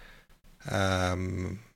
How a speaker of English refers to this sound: Excuse me. Yawning while podcasting. Not good. Not good.